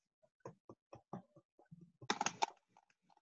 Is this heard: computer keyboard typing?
yes